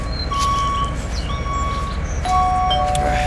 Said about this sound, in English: Charlie, just back the truck up over there. This is our last stop for the day, you supreme shits.